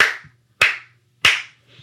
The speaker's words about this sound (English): I'm actually going to clap 3 times, so if you're not fully back in your body, this might be a little jarring, but I'm going to give you a warning that it's coming.